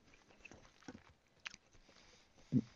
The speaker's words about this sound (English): If you hear me chewing, it's because Barb made blueberry muffins